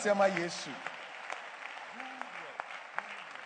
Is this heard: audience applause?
yes